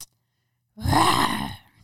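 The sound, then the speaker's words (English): A person imitates a tiger's roar, the school mascot, with a single breathy, growling vocal burst lasting about a second, rough and fairly loud, following a brief silence. “If you were a tiger, what sound would you make?”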